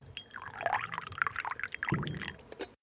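Tea is poured into a cup close by, a steady splashing trickle lasting a few seconds that deepens slightly near the end as the cup fills. No voices.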